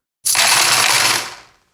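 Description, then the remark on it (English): A burst of coins dropping and jingling together, a bright metallic clatter lasting about a second before it rings out and fades. No voices are present. “Coins are a type of money.”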